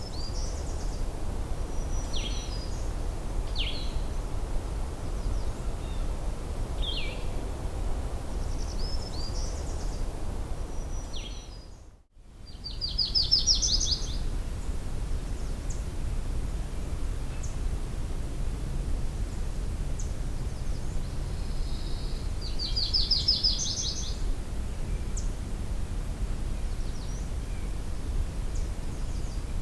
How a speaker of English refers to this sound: This recording was a blue-headed vireo and a black-throated green warbler.